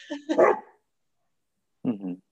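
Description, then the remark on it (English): Dogs bark in two short, loud bursts: a cluster of sharp barks, about a second of silence, then another brief round of barking. “I'm gonna hurt my dogs.”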